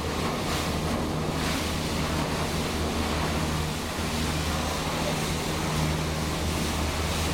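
Steady ocean surf washes continuously around a vessel at sea, with a constant low rumble and gusty wind buffeting the microphone, no voices present.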